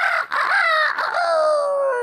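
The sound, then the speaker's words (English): A rooster crows loudly, one long, strained cock-a-doodle-doo lasting about two seconds with a brief break near the start, then trailing off in a falling, drawn-out note. “And in the morning, the rooster crowed.”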